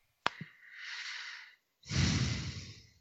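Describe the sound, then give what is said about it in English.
Heavy breaths blown right into a microphone: a sharp click, a long airy exhale, a brief pause, then a louder, rumbling breath with low-end thump, and no talking. “I'm going to take that breathing in the mic as a no.”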